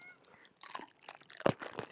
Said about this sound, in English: It's a pickle crunch.